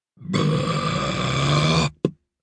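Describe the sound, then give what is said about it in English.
A long, loud, rumbling burp drags on for well over a second, then a short second belch pops out right after it, coming from inside a schoolboy's bag, with no one talking. “The burp had come from Barnaby's bag.”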